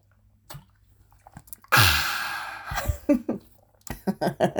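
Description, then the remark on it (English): A wet slurp as someone sips a restaurant drink of water, a rushing breathy pull lasting about a second, followed by a few small swallowing sounds before a person starts talking. “Let me just take a squig of water because you cannot see me.”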